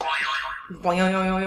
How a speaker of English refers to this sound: Here I have a random Trivial Pursuit card, and you guys have your morning zoo radio zoo buzzers ready.